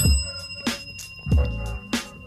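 A bell rings with a sustained, shimmering tone, struck again roughly every two-thirds of a second, three or four bright strikes in all, fairly loud, with no talking.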